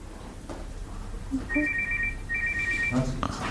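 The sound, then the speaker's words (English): A journalist's mobile phone ringtone chirps in two quick bursts of a high, warbling melody during a Roy Keane press conference at Ipswich Town, fairly clear above the low murmur and shuffle of the gathered press. “This period at Ipswich also saw one of my favourite Roy Keane moments when a journalist phone rang during his press conference.”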